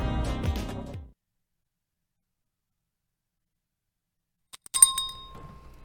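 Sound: small bell being rung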